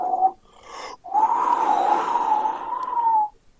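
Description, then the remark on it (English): An eerie whistle from a ghost appearing behind a group as they search: a brief mid-pitched note, a short pause, then a long sustained tone that wavers slightly, dipping and rising before cutting off. It is fairly loud, with no talking. “You hear a weird whistle coming from the behind you as you guys are beginning to, you know, search through.”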